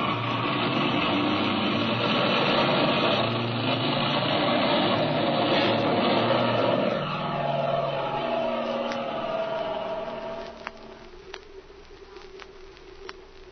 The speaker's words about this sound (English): Mother, look, I think that's Jimmy's airplane, off to the west there, see? Your eyes are better than mine, child. I don't see anything. Yes, I'm sure it's their ship. I guess you're right. I can hear it now.